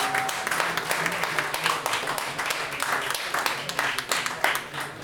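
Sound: audience applause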